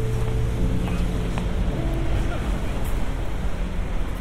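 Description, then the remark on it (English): Busy riverside city ambience on a walk along the River Thames in London: a steady low boat engine drone with rumbling traffic and wind, continuous and fairly loud, with faint voices mixed into the background. “And today I'm going to be carrying on with my walk along the River Thames in London.”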